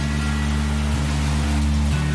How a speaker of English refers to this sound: Now it's pouring down rain again.